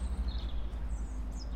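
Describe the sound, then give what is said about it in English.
Faint bird chirps in London's Holland Park drift in and out over a steady low outdoor rumble, a few short high calls scattered across the quiet background. “amid the birdsong of London's Holland Park”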